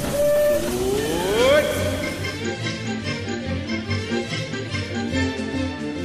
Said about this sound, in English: And so let's get on the Disneyland Railroad right now. Your attention, please. The Disneyland Limited now leaving for a grand circle tour of the Magic Kingdom.